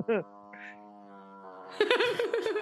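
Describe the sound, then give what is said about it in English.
A long fart sound effect: a steady, buzzy low tone held for over a second after a brief squeak, followed by voices breaking into laughter and chatter. “They went into long fart sound effect.”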